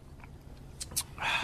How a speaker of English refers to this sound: So cheers. Let's take a sip of this. Cheers.